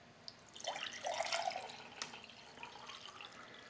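Water trickles and splashes into a container for a couple of seconds, a short pour with a faint rising tone, then a few scattered drips.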